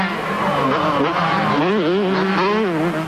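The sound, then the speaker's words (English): Loud supercross motorcycle engines snarl and rev continuously on a race track in Florida, their pitch climbing and dipping rapidly as riders throttle up and ease off over the bumpy ground of a rhythm section. “Look at that rhythm section. He just pounds right through it.”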